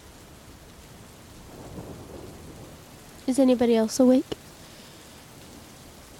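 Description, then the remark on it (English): Steady, gentle rain hisses softly throughout, with faint rumbles in the background; partway through, a person briefly speaks in a quiet voice over the rainfall. “It sounds a little bit softer than the day before, but it sounds like it's still raining.”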